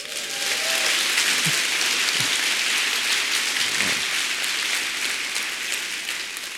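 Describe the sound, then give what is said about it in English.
A church audience applauds as a hand to Jesus, a dense, steady wash of many hands clapping together that holds at an even level for several seconds before easing slightly at the end, with no voices over it. “Another hand to Jesus.”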